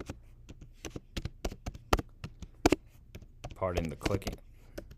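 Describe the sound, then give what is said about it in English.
Rapid, irregular clacking of keys on a computer keyboard as someone searches online for Anthony Mackie's name, fairly loud, with a brief murmur of a voice partway through before the typing resumes. “Pardon the clicking sound.”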